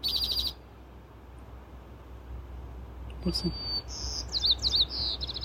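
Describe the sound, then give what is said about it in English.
Birds sing in short, bright bursts of chirps and whistled trills, a brief call at the start, then a livelier run of rising and falling notes near the end over a soft outdoor background. “the songs of the birds land right in our hearts.”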